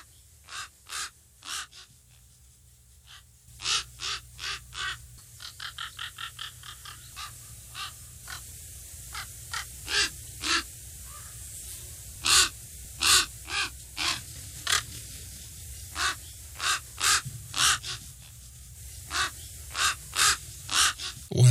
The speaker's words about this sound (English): The raven or crow, however you want to call this animal, you would be absolutely correct. And they are seen all over the world in the Northern Hemisphere, North America, Europe, and Asia.